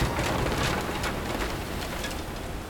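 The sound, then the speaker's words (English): A storm in progress: heavy, steady rain pours down with a dense hiss and patter, over a low rumbling undertone, loud throughout with no voices. “The storm was over”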